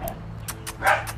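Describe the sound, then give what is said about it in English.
A person mimics a dog barking with a quick run of about four or five short, yappy woofs, fairly loud, the loudest bark near the end. “I know that's how dogs communicate, bro.”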